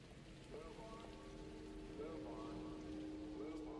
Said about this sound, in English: I was watching the other day thinking, my God, I had it raining hard.